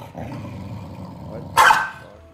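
Dogs growl low and steadily over food for a moment, then one lets out a single sharp, loud bark before the growling trails off.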